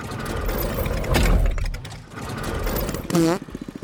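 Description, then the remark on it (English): A loud car engine roars and revs during a race, its pitch surging upward in a brief burst near the end, amid clattering mechanical noise and a busy, cluttered background. “I couldn't hear you over the sound of my engine beating you.”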